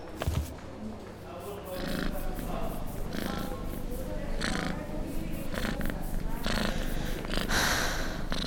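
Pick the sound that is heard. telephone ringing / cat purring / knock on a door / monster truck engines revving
cat purring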